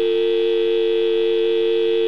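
A steady, unbroken dial tone hums continuously from the receiver of a working payphone, clear and moderately loud, with no voices or other sounds.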